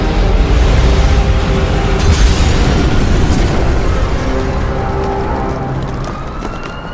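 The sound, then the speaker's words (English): A massive crash and explosion as a monorail carrying an emitter plummets into a Gotham City street and smashes into a cloud of dust and debris, roaring out as a sustained, heavy rumble with crunching debris and a faint rising siren-like tone, slowly fading over several seconds. “Batman glided to safety as the monorail, the emitter, and Ra's al Ghul and his fiendish plot to destroy Gotham City all plummeted into the street below and smashed into a cloud of dust and debris.”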